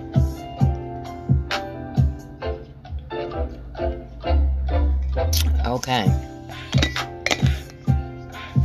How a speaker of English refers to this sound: excuse me, a little bit of water right quick.